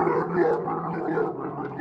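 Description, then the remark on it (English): A low, rough growl from a gigantic carrot monster rumbles steadily for a couple of seconds, gravelly and gargling in texture, with no talking over it. “I don't know, he kind of growls on you.”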